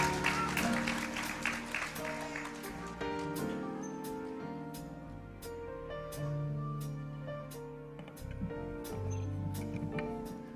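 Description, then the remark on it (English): A church audience gives a glory clap for the Lord, a dense burst at first that settles into steady rhythmic claps, over sustained organ or keyboard chords playing throughout. “All the saints, give a glory clap for the Lord.”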